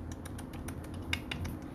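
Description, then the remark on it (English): Rapid, steady computer keyboard clicking at a workplace, with a dozen or so crisp keystrokes in quick succession over a low background hum, moderately loud with no voices. “You're just clicking away at the keyboard.”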